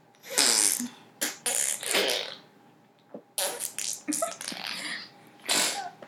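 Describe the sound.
Someone imitates a fart with their mouth, blowing a string of breathy, airy raspberry bursts, with a brief pause midway before several more sputtering puffs.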